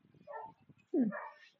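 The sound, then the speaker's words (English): A dog barks twice, a softer yelp followed by a louder, drawn-out bark that slides upward into a whine. Faint low murmuring sits underneath at the start. “Dog, shush.”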